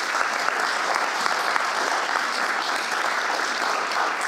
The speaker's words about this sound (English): Thank you so much. One more round of applause for those guys.